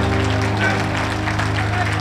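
An audience claps steadily as a continuous wash of applause, over a sustained low humming tone that holds throughout.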